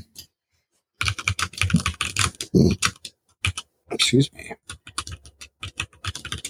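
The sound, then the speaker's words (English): Rapid clacking of a mechanical keyboard being typed on, crisp keystrokes in quick bursts with brief pauses, and a voice speaking briefly over it. “Can you hear my typing? Enhance. Mm-hmm. Yeah, I like it. Mechanical keyboard, dude.”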